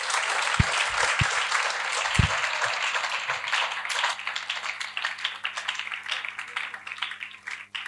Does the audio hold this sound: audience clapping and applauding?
yes